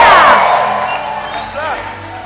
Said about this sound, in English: Are you clapping your hands for Jesus? Come on, lift up your voice and give the Lord a shout. God bless you.